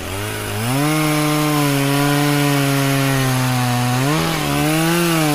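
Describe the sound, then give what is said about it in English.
A chainsaw runs loud with a steady buzzing drone, revving up in pitch near the start, then dipping and revving again toward the end, with no voices. “I can't believe that no one has invented the pumpkin chainsaw.”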